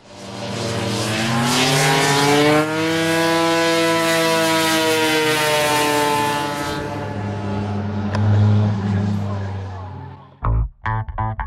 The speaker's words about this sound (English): one of the favorites now for me is a Miata that seemingly has a motorcycle engine inside of it. It sounds really confusing. You think a dirt bike is going by, and it's actually a Miata.